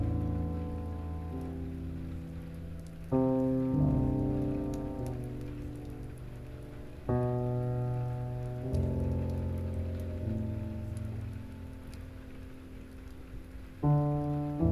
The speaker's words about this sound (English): Be one with the rain. The comforting, rhythmic healer all around you.